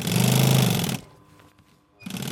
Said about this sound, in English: So this is what you'd normally see in a factory. But because I do so much sewing, I've got an industrial sewing machine.